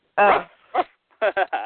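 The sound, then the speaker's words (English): A person mimics a dog barking with voiced woofs: one drawn-out bark, a short one after a pause, then three quick barks in a row. “Dog collar match, rough.”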